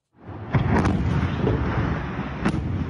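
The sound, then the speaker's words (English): A loud, steady roar of an early morning fire and explosion at a shopping mall in Moscow, caused by unsafe welding, rumbles throughout, with a few sharp cracks and pops breaking through, heard without any voices. “Some stunning video to share with you from an early morning fire and explosion at a Moscow shopping mall.”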